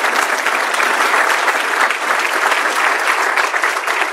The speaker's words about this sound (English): And let's give him another round of applause, please.